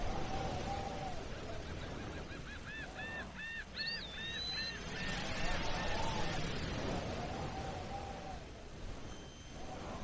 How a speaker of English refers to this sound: Oh, you can hear the wind. The wind's rustling in the trees.